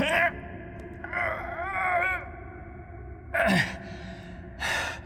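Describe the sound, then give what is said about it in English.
Strained, effortful vocal sounds: a brief gasp, a longer wavering groan of exertion, then two sharp breathy pants as someone tries to lift a very heavy object. “This is ridiculously heavy, Gustav panted after an initial attempt.”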